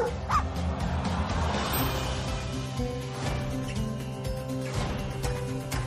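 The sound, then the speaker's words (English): A puppy barks a few times in short, spaced-out bursts over a steady, humming background, at moderate loudness. “Let him out. Whatever you think is Let happening is not. The dog. Oh, hi, puppy.”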